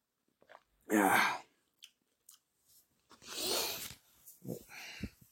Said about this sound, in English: If you're going to get a can of G Fuel, get the Sonic can. Get the Sonic flavor, yes. Alright, let me take a sip of this real quick.